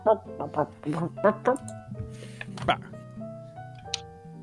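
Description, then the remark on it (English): A human voice mimics a dog's barking with a quick run of five or six short, punchy barks, followed by a few softer vocal sounds and a brief sharp click. “Dog's barking.”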